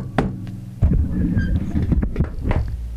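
A few dull knuckle knocks on a desk, low and thuddy, spaced irregularly over a steady low hum, with no talking.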